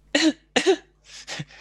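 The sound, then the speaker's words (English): A guinea pig's high-pitched coughs: two sharp, loud bursts in quick succession, followed by a few softer, breathier hacks, with no talking. “They have a very high-pitched cough.”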